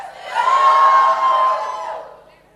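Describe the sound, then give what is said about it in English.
A crowd breaks into loud shouting and cheering, a dense swell of many voices that rises quickly, holds for about two seconds, then fades out. “Hey, you should be shouting and screaming.”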